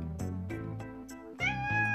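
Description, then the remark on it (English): A cat meows in a drawn-out, whiny string of cries that swells louder and rises in pitch near the end, with no one talking. “I mean, you are a cat.”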